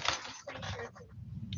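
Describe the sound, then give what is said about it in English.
A bunch of keys jingles as they are handed over, in a quick burst of bright metallic clinks, fairly loud, then settles into softer rattling near the end with a faint low murmur underneath. “I don't know where the charging cable is, but here's my keys if you need to go out to the car.”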